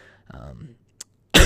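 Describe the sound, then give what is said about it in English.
A short, low throat-clearing rumble, then a brief click, then one loud, sharp cough bursting into the microphone at the very end. No one speaks. “and yeah, with that cough, I will see you next time.”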